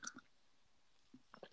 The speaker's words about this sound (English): Let me take a sip of my drink.